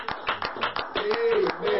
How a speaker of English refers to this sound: Come on, let's clap our hands unto the Lord this morning.